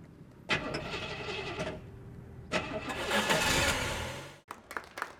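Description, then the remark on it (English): A Dodge Dart's engine cranks in two loud, grinding bursts with a short pause between them, then catches and settles into a rough, uneven idle. “And I go out and I start the car.”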